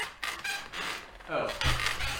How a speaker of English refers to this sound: Yeah, these are very creaky chairs.